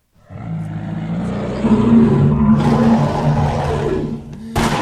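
An angry bear roar sound effect, the 'angry West Hollywood bear' of a comedy show: one long, deep, rumbling growl that holds steady for several seconds, loud and gravelly, then breaks off into a sudden sharp burst at the very end.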